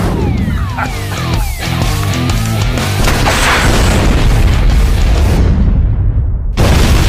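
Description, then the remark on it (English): A loud, rumbling explosion roars on for several seconds after a few sweeping, whistle-like tones, with a deep booming low end, then briefly cuts out before the roar resumes. “Well, just blow it up.”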